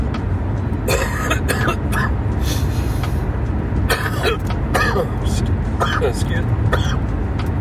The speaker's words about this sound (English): Excuse me there. Don't worry about that. Yeah, that was just some residual cough from smoke. Yeah, I'm fine. I might sound a little congested, like, but I think it's just from the smoke I was around and kind of stuff you up a little bit.